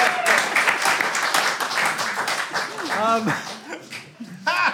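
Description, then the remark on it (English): A crowd applauds with dense, rapid clapping that fills the first few seconds, then thins as voices rise in whoops, cheers and laughter over the remaining claps. “That, applause, yes.”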